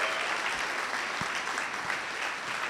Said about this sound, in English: So could you give them a big round of applause as they come? Excited to have them.